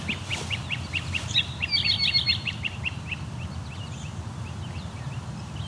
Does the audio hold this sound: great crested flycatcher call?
yes